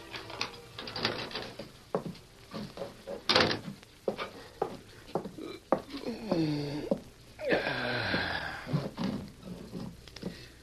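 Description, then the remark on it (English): Corey Meade works open the front door of his boarding house with latch clicks and a creaking hinge, then it shuts with a solid thud, fairly loud, followed by shuffling movement. “It was less than 2 hours later that Corey Meade entered the front door of his boarding house.”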